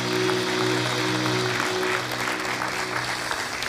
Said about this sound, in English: And so can we, at all of our locations today, can we clap our hands and thank God for those that protect and serve? We're grateful.